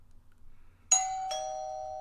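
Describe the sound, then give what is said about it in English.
A doorbell chimes twice in quick succession on Halloween, announcing the next visitor at the door, a bright two-tone ding-dong that rings out and lingers, with faint low rumble beforehand and no talking. “Next up at the door, it's Jordan Scarlett.”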